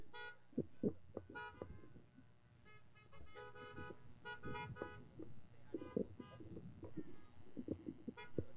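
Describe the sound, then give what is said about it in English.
Many car horns honk at once in overlapping bursts, some long blasts and some short toots, forming a loud, continuous chorus of honking with no one speaking; the horns are honked to bless families. “Let's honk and bless these families and tell them how much we love them.”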